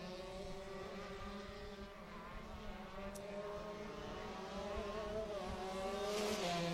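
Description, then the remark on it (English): Race cars roar around a track on a 69-degree evening near sunset, their engines making a loud, continuous droning whine with layered harmonic tones that swell slightly toward the end. No one speaks. “Still 69 degrees here trackside.”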